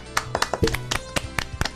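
A short, sparse round of applause on the live show Game That Tune, for the crew member who made the live video look good: scattered, irregular claps, roughly nine sharp hits in under two seconds, as if only a few people are clapping, with no talking.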